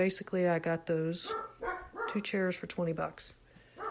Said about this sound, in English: Sorry about the dog.